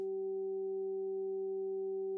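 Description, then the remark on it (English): A steady electronic hum of three pure sine tones at 192, 384 and 768 hertz, solfeggio frequencies, sounding together, low, middle and higher, held completely unchanging for about two seconds with no other sounds. “You are hearing three tones.”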